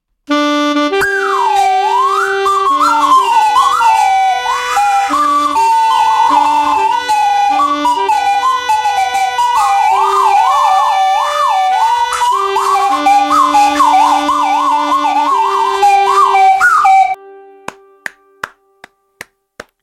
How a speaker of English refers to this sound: we do a 21 slide whistle salute to our dear friend Brian, hashtag Brian Strong, as we play taps